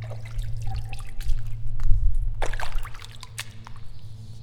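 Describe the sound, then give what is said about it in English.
Water dripping in the watery lowlands of the Crystal Peat Conservation Area, a peat wetland: irregular drips and small splashes scattered over a steady low rumble, with a slightly louder cluster of drops midway; no one speaks. “On the wooded, verdant path that descended into the watery lowlands of the Crystal Peat Conservation Area, I was struck by the sound of the space.”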